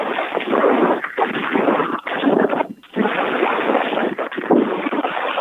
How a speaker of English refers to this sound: It's on me again. It's very breezy out here. Listen to this.